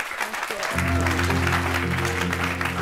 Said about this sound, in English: Everybody give him a huge round of applause.